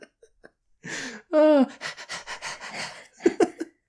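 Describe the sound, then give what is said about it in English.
A person imitates a dog panting: a run of quick, breathy huffs and wheezy gasps, fairly loud, with a brief strained vocal burst partway through. “It's an over-the-top insta-love tale that will leave you panting for more. I am not a dog, sir.”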